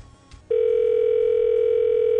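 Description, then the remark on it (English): A steady telephone dial tone, heard while placing a call to Starbucks, starts abruptly after a brief quiet moment and holds loud and unbroken to the end, a constant electronic hum with bright overtones. “Calling Starbucks.”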